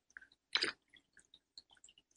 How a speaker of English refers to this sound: Taking a sip of my spiritual espresso.